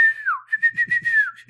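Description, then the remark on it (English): A clear whistle holds a steady pitch, dips briefly, then breaks into a quick run of rhythmic warbling pulses before sliding down at the end. “…'s whistles.”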